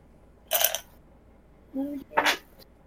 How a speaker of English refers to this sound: Hold on, I just have to find the dice.